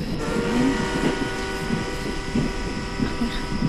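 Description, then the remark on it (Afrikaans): A long steam train rumbles and hisses steadily as it departs, its iron wheels turning and steam rising, with a low churning drone and faint sustained whistle-like tones, while voices murmur underneath. “Die eisterwiele, die stoom, die trein waarin strek agtertoe.”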